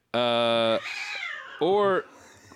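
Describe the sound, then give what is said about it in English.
Cats fighting and yowling: a long, loud, strained cry, then a rough, hissing stretch, then a second shorter wavering yowl, fairly loud with no talking. “Sounds like my cats are having a fight in the background.”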